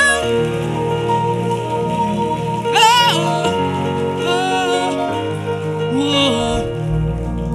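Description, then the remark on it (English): An audience claps steadily, a dense crackling patter of many hands that lasts throughout, over sustained organ-like chords with a few brief voice swells rising above. “I said, clap your hands in the room.”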